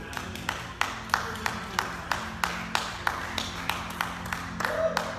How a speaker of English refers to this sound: And at home, can you just, like, even if you're by yourself, just start clapping?